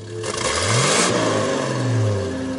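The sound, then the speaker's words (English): A car engine, stopped on a driveway a few steps from a cow, revs loudly, the pitch climbing in two rising surges with a steady rumble and some clatter underneath, no voices present. “Finally, just a few steps away from the cow, he stopped and let the motor roar.”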